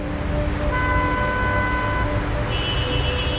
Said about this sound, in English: What do you see and hear? Maybe a dog barking in the distance. Or the sound of traffic.